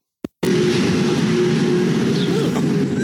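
A ride on the Orion roller coaster at Kings Island kicks in abruptly after a brief click: a loud, steady mechanical roar and rattling rumble with a low droning hum running underneath, no voices.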